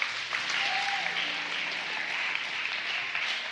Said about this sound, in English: Give a round of applause for our volunteers.